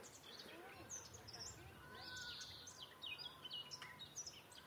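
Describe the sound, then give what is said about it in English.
A garden warbler sings a long, rapid, continuous warble of bright chirps and trills, steady, by a natural lake surrounded by mountains in spring, over a soft outdoor background with faint rustling and murmur. “That's the song of the garden warbler.”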